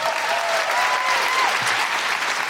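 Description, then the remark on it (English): Steady, dense audience applause for an audience member invited up on stage at a live show fills the whole stretch, a continuous wash of many hands clapping at an even loudness, with a faint tonal whistle-like line briefly audible underneath. “Bigger applause”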